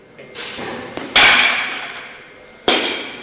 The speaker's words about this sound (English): It only took a mild 120 km/h inswinger to remove my stumps, but it's hoped the new video simulator will allow more young Auckland cricketers to stay at the crease longer.